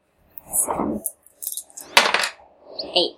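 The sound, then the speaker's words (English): Two small six-sided dice are rolled to see who gets the highest, rattling and clattering across a hard tabletop in a few uneven bursts, with one sharp clack partway through before they tumble to a stop. “Alright, what is it? 2d6 here? One of your d6 and one of my d6. You can roll it first.”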